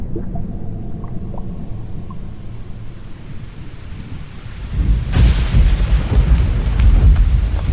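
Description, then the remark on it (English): A low, rolling rumble of thunder builds over steady rain, then a sharp, loud crack of thunder bursts in about two-thirds through and keeps rumbling heavily to the end. No voices. “The rain is coming.”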